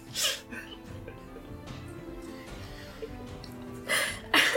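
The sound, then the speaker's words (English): Sharp, breathy allergy sneezes: one bursts out near the start, then a quick pair follows at the end, with faint murmuring voices and background noise in between. “I can't tell if you had allergy medicine or not enough.”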